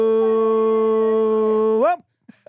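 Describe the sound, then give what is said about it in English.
A dog in a studio howls: a single long, steady howl holds one tone for nearly two seconds, then swoops up and falls away, followed by a brief faint noise after a short pause. “Shout out to my dog who's in studio who starts howling when you do that.”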